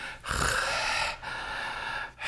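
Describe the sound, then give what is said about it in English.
A person makes heavy, raspy breathing sounds into the mic, three long noisy breaths with brief pauses between them, a voice imitating the ominous panting of a creepy breathing phone call. “What's creepier, the breathing phone call?”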